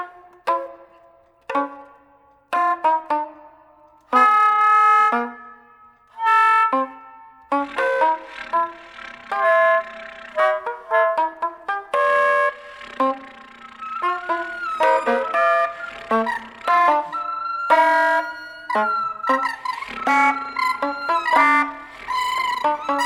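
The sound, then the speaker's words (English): Solo saxophone played with extended techniques in the player's own sonic vocabulary, vibrating at both ends of the horn: short, separated honks and stabs at first, then denser buzzing, multiphonic-like tones and bent pitches outside the 12 tones of equal temperament, played loudly with no talking. “So consequently, you know, I've developed my own sonic vocabulary within the saxophone.”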